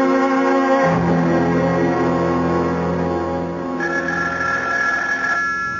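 A telephone bell rings loudly, a continuous shrill metallic trill that carries on for several seconds with no one speaking over it.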